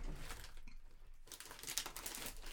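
Soft crinkling and rustling of someone rummaging through his belongings, distant from the microphone, searching for a DVD of the film Gremlins 2, with irregular scrapes and small crackles and a brief quieter pause partway through.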